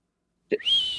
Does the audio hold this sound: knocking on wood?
no